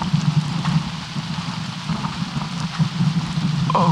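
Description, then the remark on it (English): Heavy rain suddenly pours down during a storm onto the metal roof of a van, a dense, continuous patter with a low resonant rumble and occasional louder drops, with no talking. “If you're listening, it just started raining out of nowhere.”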